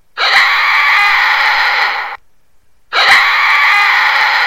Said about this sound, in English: And in May's Landing, the residents were reporting horrible, unearthly screams at night.